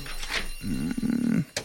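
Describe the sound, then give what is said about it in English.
A single sustained quiz buzzer sounds, a low, droning electronic tone with a slight waver that lasts under a second, preceded by a brief burst of scratchy noise. “Seeing it's out with the buzzer.”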